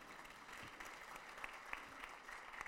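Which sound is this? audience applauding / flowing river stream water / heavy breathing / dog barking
audience applauding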